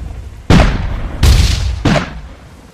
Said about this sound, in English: There is cannon fire from behind you.